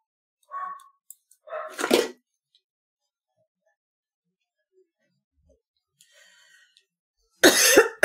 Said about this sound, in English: I am going to hang tight here for a second. My dogs are barking a bit.